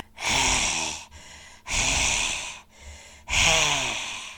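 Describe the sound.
A person imitates the heavy breathing of a big, fat collie dog sleeping under a bed: three long, loud, raspy exhales at a slow, steady pace, separated by shorter, softer inhales, with no talking.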